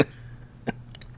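A quick sip from a drink, a single short slurping burst in an otherwise quiet moment, followed by a few faint, soft clicks like a glass being set down.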